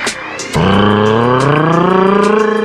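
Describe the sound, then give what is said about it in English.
A voice imitates, by rolling the tongue, a car engine revving and speeding away from a red light: a loud, sustained droning rise that kicks in after a brief pause and holds steady with a slight pulsing rattle. “You sound like a car speeding away from the red light.”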